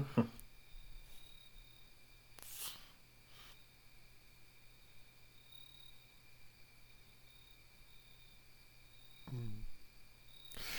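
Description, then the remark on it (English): Crickets chirp steadily and faintly at night in London, a continuous high trill over a low hum, interrupted by a couple of brief soft rustling bursts. “I don't know why there are crickets in London at night.”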